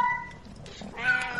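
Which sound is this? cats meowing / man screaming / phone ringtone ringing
cats meowing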